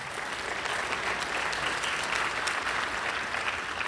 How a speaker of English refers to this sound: We've got graduation going on, so all the graduates, congratulations. You did it. You survived. Well done. If you want to clap for them.